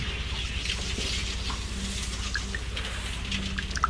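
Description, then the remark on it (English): Scattered water drips plink at an uneven pace, small bright pings every second or so, over a steady low droning hum and a faint hiss. “I hear that dripping.”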